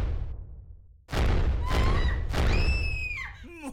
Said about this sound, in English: How about a dissonant explosion and sinister laughter?